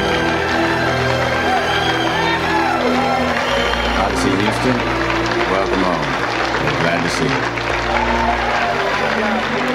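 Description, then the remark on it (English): A crowd in Houston claps and cheers, celebrating that the crew of Odyssey made it home, a dense, steady wash of applause mixed with overlapping excited voices that stays loud for the full ten seconds. “Clapping again.”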